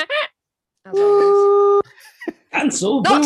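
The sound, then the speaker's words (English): At the start of a quiz, several people take turns making quiz buzzer noises with their voices: a short vocal blip, then a long steady nasal buzz, followed by rapid wobbly warbling imitations, all loud. “Everyone got a buzzer noise.”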